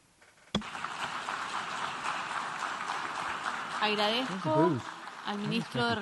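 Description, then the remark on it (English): Applause bursts out suddenly after a speech by the Minister of Foreign Affairs of the Russian Federation and holds as a dense, steady wash of many hands clapping; in the last couple of seconds a man's voice starts speaking over the continuing clapping. “He got almost as much applause as Biden.”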